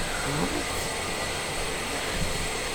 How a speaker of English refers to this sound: Oh, I see. Someone is taking a loud shower in your house, and you were muting yourself.